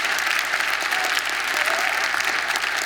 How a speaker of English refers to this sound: First thing, let's put your hands together and give God a big hand clap of praise. Amen.